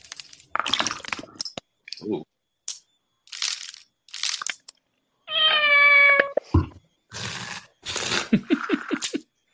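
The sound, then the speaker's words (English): A cat lets out one loud, drawn-out meow lasting about a second, surrounded by short crunchy, crackling bursts before and after. “Here is a little cook cat. Cat, pet, delicious food.”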